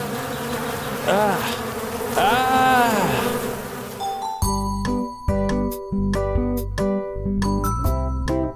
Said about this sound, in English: That was a swarm of mosquitoes.